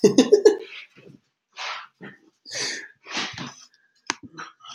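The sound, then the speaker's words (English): A hungry dog barks to be fed, opening with a rapid cluster of three or four loud barks, then a scattering of shorter, breathier woofs and huffs with brief pauses between them. “I love how the dog tells me when to eat.”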